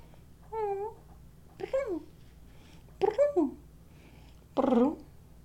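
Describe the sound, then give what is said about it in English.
A female cat meows four times at roughly even intervals, each call a drawn-out, wavering cry, with a faint steady hum underneath and no talking. “I mean, she's the most OCD cat in the world.”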